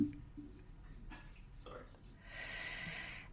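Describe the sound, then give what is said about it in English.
A man pours water into a glass in the background, a soft, steady splashing hiss that swells over the last second or so, set against a low, muffled rumble. “It's really weird hearing Rich pour water in the background.”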